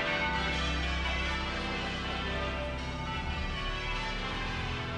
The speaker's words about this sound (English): There are the bells of Westminster Abbey pealing out for us as we watch the King and Queen Consort preparing to descend from the coronation coach.